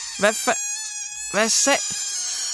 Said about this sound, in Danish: Hvad fanden er det? Nå, det er luften, der går ud af ballonen. Kinas ballon.